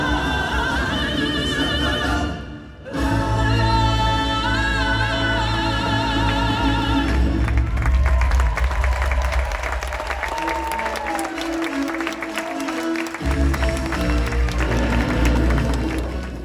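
Sustained audience applause as performers take their bows at the end of a show, some audience members standing, a dense steady wash of clapping that carries on for the whole stretch, loud and continuous with music-like tones layered over it.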